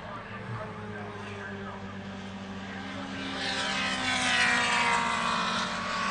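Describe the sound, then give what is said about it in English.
Race car engines roar steadily at the Mid-Ohio racetrack on a beautiful day, a loud continuous drone that swells louder as a car passes by, then holds at a high, buzzing pitch. “But I hear cars. Yeah, it's pretty loud here.”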